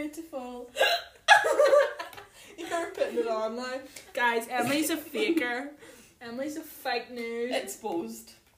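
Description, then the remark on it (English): Voices make a run of short, abrupt hiccup-like vocal bursts, fairly loud, with brief pauses between, amid laughter and talk. “They didn't even notice the hiccups.”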